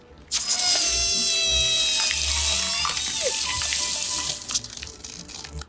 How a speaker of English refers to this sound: What do you got? A water hose? Oh, well, hey, what baby gonna do now? This happened. I'm covered in human feces. That's a good look for you, but for health reasons, I should probably spray you off.